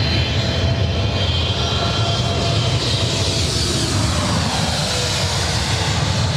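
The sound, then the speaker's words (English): A Japan Airlines Boeing 777-300ER jet airliner, flight 62 from Tokyo Narita, passes low overhead with a loud, steady roar, its engine whine sliding downward in pitch as it moves past. No one speaks. “And that was Japan Airlines 62 from Tokyo Narita, 777-300ER.”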